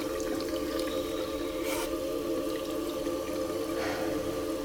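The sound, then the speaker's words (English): Water runs steadily into a bathroom sink, with two brief splashes about two seconds apart as someone splashes their face, rising over the constant flow. No voices are heard. “I splash my face.”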